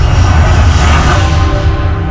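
A loud, steady roar of a jet aircraft engine, continuous with a deep rumbling low end and a broad rushing hiss, holding full power throughout without a break.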